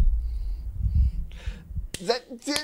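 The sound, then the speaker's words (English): A single sharp hand slap from a high five cracks out, with a voice starting up right after it over a low background rumble. “You heard the slap, right?”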